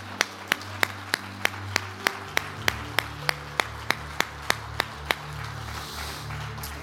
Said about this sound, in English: Would you lay your Bibles down, clap your hands and shout to the Lord. Lift your voices. Hallelujah.